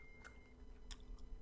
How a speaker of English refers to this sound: Oh, man. Now I'm chewing now. Got some gummy bears, kid.